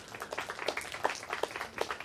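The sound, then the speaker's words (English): A crowd at a church service claps steadily for about two seconds, a dense patter of overlapping hand claps at a fairly soft, even level with no voices over it. “And so, man, yeah, you can applaud that.”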